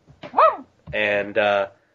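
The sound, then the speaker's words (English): A person imitates a wolf: a brief rising-and-falling howl, then two longer, strained howling calls in quick succession, fairly loud with no other sounds around. “She hears a wolf.”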